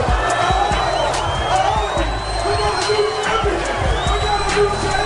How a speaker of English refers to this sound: Big crowd. It is a big crowd. Did you hear that? I mean, he got quite the response.